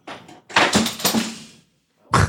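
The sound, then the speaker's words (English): A mic stand gets bumped: a short knock, then a longer clattering rumble of thuds and rattles lasting about a second, silence, and one more heavy thud. “Is that just the mic stand?”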